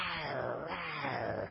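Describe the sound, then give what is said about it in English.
A person imitates a bear cub growling: one continuous, raspy growl lasting about a second and a half, steady in loudness before cutting off. No words are spoken. “It just riles up, and it's just growling like this.”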